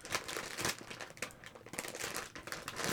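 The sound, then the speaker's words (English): Plastic snack bags being crinkled and crunched in a steady stream of sharp, crackly bursts, bright and hissy, with no talking. “Yeah, let's crunch them some more, yes.”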